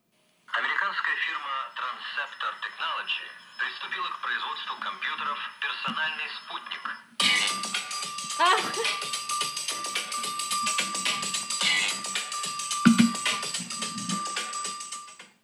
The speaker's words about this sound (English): And that is the most played song on my phone.